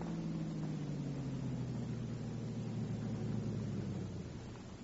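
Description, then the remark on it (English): A car engine hums steadily, its low drone dropping slightly in pitch as it slows, then easing off and fading toward the end as the vehicle comes to a stop out front. “Car coming.”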